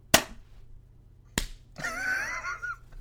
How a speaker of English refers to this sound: Are we clapping?